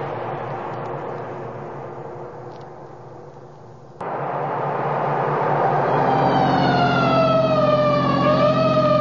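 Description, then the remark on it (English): A fire truck siren wails over a rumbling engine as the truck responds to an alarm on Pine Street. Its rising and falling tone swells louder, with no voices. “So why the siren?”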